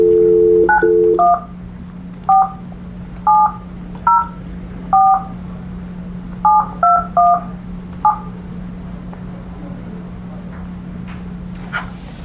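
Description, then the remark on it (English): A brief dial tone gives way to about ten keypad tones dialing a phone number, short clear beeps in uneven bursts over a steady low hum, then quiet line noise. “You didn't hit a one first?”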